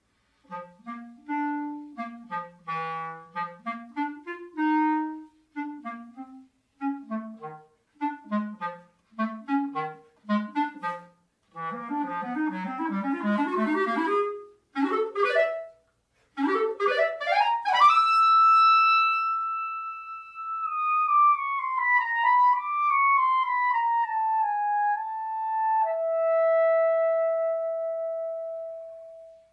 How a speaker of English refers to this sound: Music is played by the clarinet. The music sounds careful. It's kind of soft and sneaky.